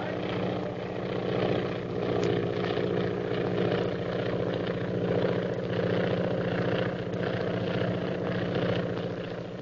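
A propeller airplane engine drones steadily and loudly throughout, a continuous low hum with a faint rhythmic throb and no breaks.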